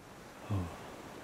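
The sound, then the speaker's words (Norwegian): Soft, steady wash of sea surf on a sandy beach in sunshine, with a brief low swell of rumbling water about halfway through before it settles back into a quiet hiss. No voices. “da må du love å få henne til å gå til den stranden her. Så kan jeg møte henne her, ikke sant? I solskinnet og i sanda og sjøen her”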